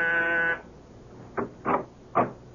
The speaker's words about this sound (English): And I was just about to leave when my door buzzer sounded.